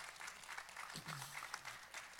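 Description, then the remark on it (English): An audience applauds the Lord during a sermon in a steady, dense patter of many hands clapping, fairly soft, with a brief low voice rising through the middle of the clapping. “And so meditation, we can give that applause to the Lord.”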